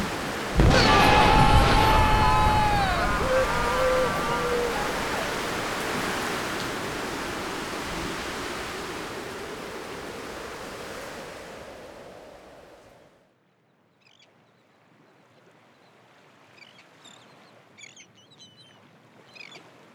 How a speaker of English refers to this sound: Basically, a massive storm blew us there by accident.